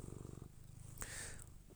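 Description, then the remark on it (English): A cat purrs steadily and loudly while rubbing itself against people to be petted, a low rhythmic rumble that continues throughout, with a brief rustling brush of fur or movement partway through. “And just starts purring all loud, rubbing himself on us so we can pet him, so he can purr louder.”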